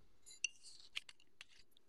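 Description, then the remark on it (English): Chilled wine being poured into a glass for a second glass, heard as a short, soft trickle between several light, sharp clinks of glass, all quiet, with no talking. “And I'm pouring myself a second glass.”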